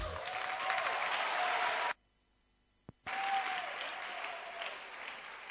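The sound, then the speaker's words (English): An audience claps hands for Jesus in a dense, steady burst of applause that stops abruptly for about a second of near silence with a single click, then resumes just as loudly. “Clap your hands for Jesus once again.”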